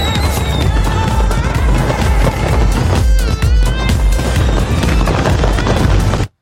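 A loud, busy birthday celebration jingle plays continuously for about six seconds, dense with bright tones and pounding low beats, then cuts off abruptly. No one talks over it.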